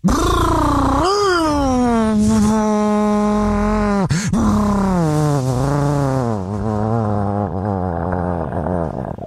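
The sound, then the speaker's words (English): A voice imitates a motorcycle stopping on the freeway, a sustained loud buzzing drone that rises, holds steady, then wavers and gradually drops in pitch, with a brief break partway through. “Well, can you tell me what it sounds like so then I can mimic it? Sure. On the freeway.”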